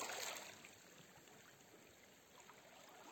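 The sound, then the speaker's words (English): Soft ocean waves wash onto a beach, a quiet, steady hiss of water with a slightly stronger surge at the start that settles into a gentle, continuous wash. “Listening to the sounds of the beach, of the water, the waves.”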